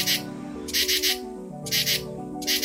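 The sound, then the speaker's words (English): A katydid, rubbing its legs against its wings, chirps in short, raspy, high-pitched bursts, grouped in pairs and repeating at a steady pace, over a soft, sustained low tonal hum. “For instance, katydids rub their legs against their wings to create a chirping sound.”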